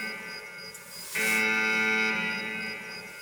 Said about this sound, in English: Fuck it. Where's the alarm? Fuck it.